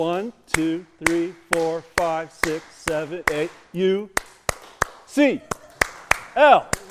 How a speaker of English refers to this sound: All right, so just to get the Stanford and Cal people upset, let's do an eight clap, all right? Ready? Go, let's go.